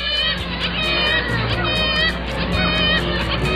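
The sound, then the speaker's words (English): Black-legged kittiwakes, small to medium-sized gulls, calling: many overlapping nasal, wailing cries repeated in quick bursts, forming a dense, steady chorus that stays loud throughout. “And there we hear it, if we use a bit of imagination, saying its name. Kittiwake, kittiwake, lives in the sea and not a lake or a river.”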